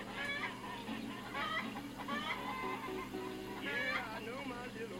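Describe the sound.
Barred Rock chickens cluck and squawk repeatedly in bursts, steady throughout, with a low background hum underneath and some indistinct voices mixed in.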